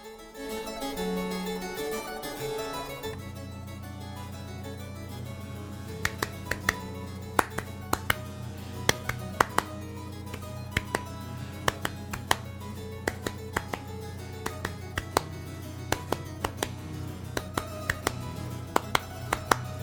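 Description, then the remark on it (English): Sharp hand claps, made to emphasize the piece's rhythmic pulse, enter after a few seconds and keep a steady, even beat over instrumental music with a low sustained bass line, the claps standing out crisply above it. “So you might not have heard it very clearly because I was clapping there to kind of drive home that rhythmic pulse thing.”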